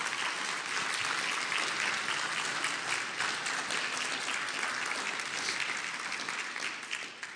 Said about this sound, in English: And so we can definitely applaud the Lord for that.